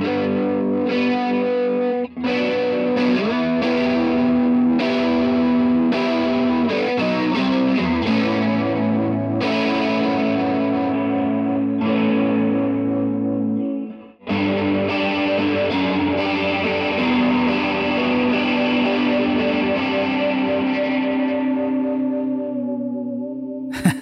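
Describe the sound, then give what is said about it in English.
A Jazzmaster electric guitar played through an Orange AD-15 amp plays sustained, heavily processed chords with a vibrato effect at high rates, a wobbling, warbling modulation, gritty overdrive and a washy reverb tail, loud and continuous with a brief break midway. No one speaks. “So if you bring it to like more of a vibrato setting with like all the crazy rates and everything, you crank it up, it'll be like kind of a cool effect.”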